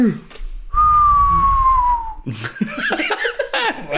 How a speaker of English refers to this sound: Oh, right, like a haunting whistle. There we go. Yeah, creepy.